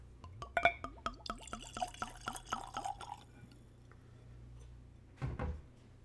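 Whiskey glugs from a bottle into a clean Glencairn whiskey glass, neat at room temperature with no ice, in a quick series of rising, gurgling bursts for a few seconds, then quiet, followed by a soft thud of glass set down.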